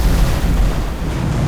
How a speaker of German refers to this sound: Valul se izbește de un munte. The wave crashes into a mountain. Die Welle trifft einen Berg. Boom!